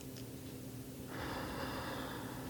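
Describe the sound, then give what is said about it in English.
A slow, deep breath drawn in through the nose into the belly during a guided breathing exercise, a soft airy hiss that swells about halfway through and holds steady to the end, quiet with no talking. “Breathing in deeply”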